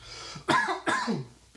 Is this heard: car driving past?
no